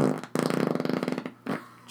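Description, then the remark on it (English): A long, loud, buzzy fart rattles out in rapid flapping pulses for about a second, then a short second burst follows after a brief pause. No one speaks. “And wait, you hear that?”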